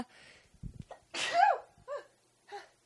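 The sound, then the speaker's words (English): A few quick catching breaths build into one loud, explosive sneeze, followed by two softer, shorter sniffing exhalations. “Oh my gosh, I'm about to sneeze too.”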